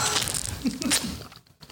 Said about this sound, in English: She's like crackling shit and chewing. Go ahead. Give us some ASMR, girl. Go ahead. Strawberry eating. Go, go, go.